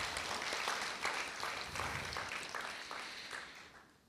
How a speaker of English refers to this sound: Okay, let's have a round of applause for our helpers.